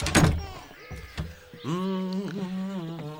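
A front door shuts with a solid thunk close by, followed by a softer knock a moment later, then a voice begins talking in a drawn-out tone.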